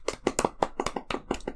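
A short burst of hand clapping for the opening of the film New Moon, roughly ten sharp claps in a quick, fairly even rhythm, like one or two people applauding, with no voices over it.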